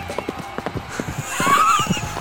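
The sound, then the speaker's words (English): Horses' hooves pound rapidly on the track at the Kentucky Derby, a dense rumbling clatter of many strides, with a high whinny rising over the thunder near the end. “Horses pounding the pathway.”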